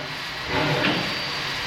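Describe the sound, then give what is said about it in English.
A restored steam locomotive of the Southern Downs Steam Railway, fitted with a new boiler built at Ipswich, runs with a steady, breathy hiss and low rumble that swells briefly midway, then settles back to an even, continuous roar. “Now, the Southern Downs Steam Railway is a place where visitors can explore old locomotives and carriages made new again, and at certain times of the year, experience the thrill of a steam train journey to various towns across the region.”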